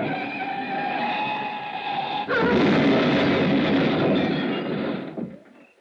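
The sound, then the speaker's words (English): A tense, whining mechanical drone suddenly gives way to a loud crash of grinding, crunching impact as a car rounding a curve near the Pacific Coast Highway hits granite cliffs, rumbling on for a few seconds before quickly dying away. “Choice, the Pacific on one side, granite cliffs on the other. I picked the cliffs.”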